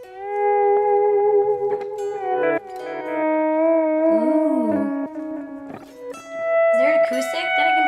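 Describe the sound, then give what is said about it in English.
A person makes long, wavering howls that slide up and down in pitch like whale song, loud, continuing without a break for several seconds. “So you're not just making whale sounds?”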